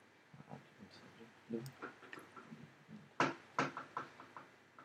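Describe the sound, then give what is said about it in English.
Two sharp, solid knocks on a door land close together near the end, standing out over a soft backdrop of muffled talk and room noise. “Are they knocking on the door?”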